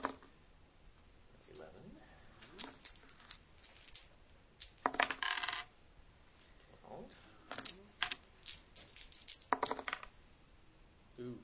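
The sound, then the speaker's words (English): Three six-sided dice clatter across a hard surface in several separate rolls for a 3d6 roll, each a quick burst of rattling clicks, fairly loud against a quiet background. “So go ahead and roll three dice 6 times, and we'll just keep track of what the numbers are.”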